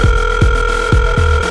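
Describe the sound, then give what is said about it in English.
A telephone rings with a steady electronic tone over a low throbbing pulse that repeats about twice a second, fairly loud, with no voices. “But as the phone ring, you yeah, cock your ears.”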